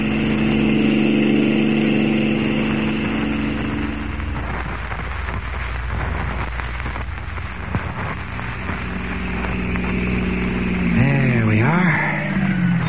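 A car engine runs steadily with a low, continuous hum, its pitch wavering and rising briefly near the end, with some light rain-like hiss in the background.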